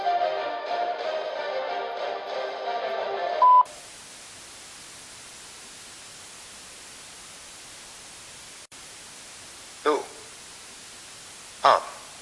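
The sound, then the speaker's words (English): A muffled recorded greeting asking callers to leave a name and message gives way to a single short electronic answering-machine beep, followed by steady line hiss and two sharp clicks like a handset being handled. “Please leave your name and message after the beep, and we shall return fire at our earliest convenience.”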